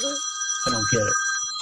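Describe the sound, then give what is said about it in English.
A telephone rings with a steady, high electronic tone that runs throughout, while a brief burst of voice-like sound rises over it midway. “That's not my phone. Oh, that's the boss calling me.”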